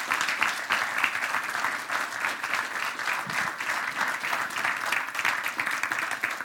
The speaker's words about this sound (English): Stay standing. Let's give a round welcome of applause to Corwin Anthony.